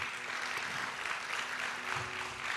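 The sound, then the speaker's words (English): A church audience applauds the Lord, a dense, steady wash of clapping hands that holds at an even level throughout, with faint low murmurs beneath it. “Come on, can you give the Lord a good round of applause?”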